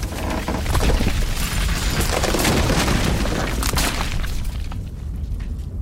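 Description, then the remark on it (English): A roof caves in with a loud, sustained crash: deep rumbling booms mixed with sharp cracks and clattering debris for several seconds, easing slightly toward the end, with no voices. “The roof is caving!”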